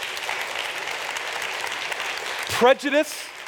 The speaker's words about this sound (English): Friends, neighborly love does not discriminate. You can clap for that.